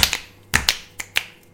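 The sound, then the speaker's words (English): A series of sharp finger clicks made for The Lion King, about six of them in an uneven rhythm, bright and crisp with quick decays, and no voices in between. “Clicks for Lion King.”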